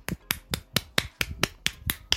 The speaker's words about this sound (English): I am clapping for you. It's a big thing, you know, if you can give yourself an orgasm. Like, I'm clapping for you again.